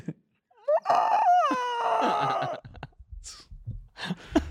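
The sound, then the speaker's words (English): A person lets out a loud, shrill squawk imitating a screeching bird, the sound made on winning a jackpot at a slot machine: a warbling cry of about two seconds with pitch swoops, followed by softer breathy sounds. “When you hit a slot and you make a bird sound, you'd be like Yeah.”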